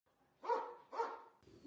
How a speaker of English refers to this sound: So the audio quality is not the very best, and you'll have to bear with the background noises and the occasional barking of my dog.